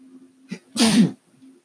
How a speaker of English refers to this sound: Because, number one, bless me. I'm allergic to racist bullshit. Just thinking about it gets me sneezing.